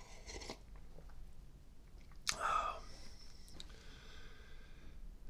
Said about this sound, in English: And take a sip of my coffee and get my brain charged up here.